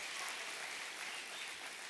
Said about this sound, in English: Come on, give me a clap and a shout this morning.